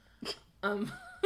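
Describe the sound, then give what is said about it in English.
A wet, gross-sounding sneeze: a short sharp burst of breath, then a louder, drawn-out voiced blast with a whiny tone, and one more quick snort at the end. “just sneezed, and it's the grossest thing I've ever heard.”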